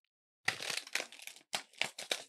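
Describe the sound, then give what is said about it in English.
A seed packet is torn open with crisp, crackly paper ripping and crinkling in two bursts, a longer rustle followed by a brief pause and a few sharper tearing pulls, with no talking. “So let's open these seeds and see what we're going to be planting today.”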